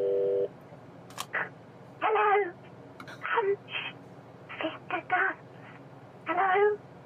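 A brief steady telephone tone sounds at the start of a phone call to someone at work on a hands-free kit, followed by clicks and muffled, tinny voice bursts as if heard over a phone line, all fairly quiet.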